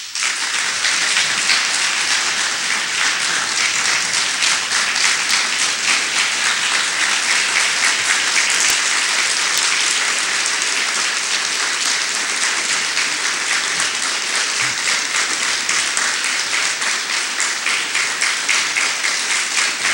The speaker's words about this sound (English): Bishop Sheen once said that if you applaud at the beginning of the speech, it represents hope. If you applaud in the middle of the if you applaud in the middle of the speech, it represents hope. And when you applaud at the end, it represents charity.